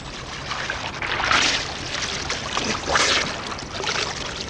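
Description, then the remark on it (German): Rhythmic splashing of someone swimming back through water, with two louder surges of sloshing strokes over a steady wash of churning water; no voices. “Ich schwimm mal zurück.”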